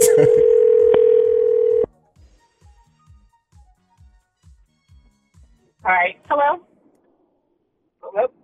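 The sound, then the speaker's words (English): A loud, steady telephone dial tone after a dropped call drones for about two seconds and cuts off, followed by faint rhythmic clicks and a few short bursts of a voice. “We got disconnected.”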